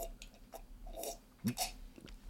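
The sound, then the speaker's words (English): Someone slurps at a cardboard box to make it sound like a smoothie: a few quiet, wet sucking and smacking mouth noises, with one louder gulp-like burst partway through, and no speech. “Make this cardboard box sound like a smoothie.”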